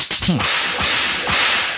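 Four loud, sharp belt whip cracks in an uneven rhythm: two quick snaps, then two more spaced apart, each with a brief hissing tail and no voices.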